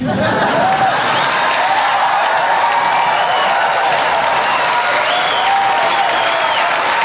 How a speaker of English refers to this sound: But, and that gets a lot of applause here